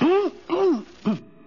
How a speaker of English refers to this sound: I was just clearing my throat, Mr. McGee.